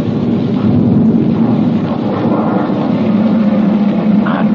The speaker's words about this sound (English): Three ambulances freighted with wounded growl unsteadily forward.